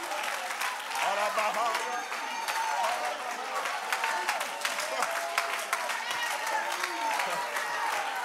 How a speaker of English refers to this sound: Come on, won't we just take 10 seconds? Clap your hands unto the Lord and magnify him.